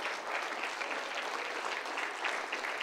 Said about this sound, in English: Give them a big hand clap and thank God for them.